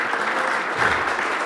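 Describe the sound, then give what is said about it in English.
Steady applause at the Village Church on Mother's Day, the men clapping for the mothers, a dense wash of clapping hands that holds at an even, moderate level throughout with no voices rising above it. “Give a big round of applause for all of the moms.”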